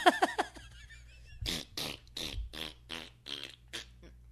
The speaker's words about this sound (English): Oh, I mean, okay, I'm pressing a button on the soundboard now, too. And it's 20 people farting.